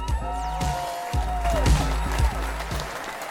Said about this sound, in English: So much applause break. I'm like waiting for the crowd to calm down. Everyone's huge, so excited. Huge audience. Everyone's, live audience. It's a live audience here in front of us, and they're all so excited to be here.